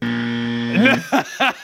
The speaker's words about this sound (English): We need a correct buzzer.